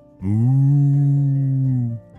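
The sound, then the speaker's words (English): A single long, low moo from a human voice imitating a cow to impress cows, held steadily for nearly two seconds and fairly loud, with no other sounds around it. “Wow, Ollie, you sound like a real cow, said Ellie.”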